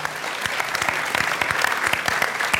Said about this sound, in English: Before we close, I'd like to thank the California Wellness Foundation, our partner tonight, for making this program possible. So a big round of applause for them.